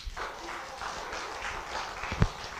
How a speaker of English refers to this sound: Oh, he gets an applause. All right. That's nice.